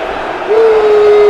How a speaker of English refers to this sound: Crowd getting unhappy, listeners.